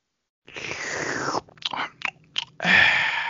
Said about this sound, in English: I will sip of water while you think, as I am wont to do.